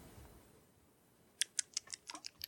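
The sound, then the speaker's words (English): A quick run of about eight sharp clicks from a computer mouse and keyboard, coming in an uneven rhythm after a second of quiet, with no talking. “And I'm just going to keep clicking.”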